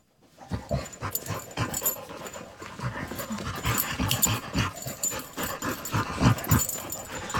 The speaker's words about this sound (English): so dogs apparently know how to laugh. And it's not like human laughter or it's not like a whining sound, which you would expect it to be. It's actually, it sounds like panting and they exhale when they're panting. Here's some audio of a dog laughing.